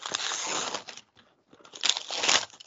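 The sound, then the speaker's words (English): Wrapping paper on a birthday present is ripped open in two noisy bursts of tearing and crinkling, the first lasting about a second, then a brief pause before a second, louder rip. “Well, I was going to say, why don't you go ahead and open your birthday present?”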